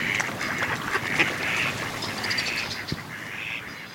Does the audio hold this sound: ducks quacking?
yes